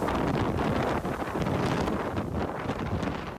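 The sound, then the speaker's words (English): Hurricane Ian's wind roars in a loud, continuous wash of noise at the Berlin United Methodist Church in Murrells Inlet, South Carolina, surging and buffeting the microphone in uneven gusts, with no voices heard. “That's the Berlin United Methodist Church in Murrells Inlet, South Carolina, as Hurricane Ian's hit.”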